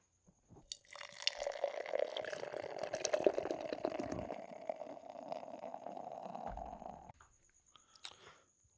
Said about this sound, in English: Alesmith, San Diego, Alvarado, LA, West Coast, full through and through, doing this West Coast style IPA with some Down Under ingredients. Let's get this beer poured out.